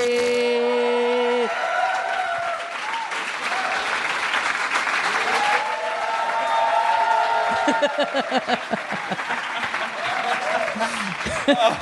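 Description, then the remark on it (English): A live audience at the Little Dum Dum Club applauds and cheers steadily for about twelve seconds as a guest comedian is welcomed, with a few whoops rising over the clapping and some indistinct voices mixed in at the start and end. “Just buying you some time, it looked like the applause was going to run out.”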